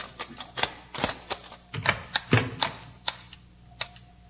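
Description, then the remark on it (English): A massive metal door handle on a door taken from an ancient oriental temple is turned and the door opens: an irregular run of sharp clicks and clunks from the latch mechanism, with no voices. “it flashed on automatically when I opened the door”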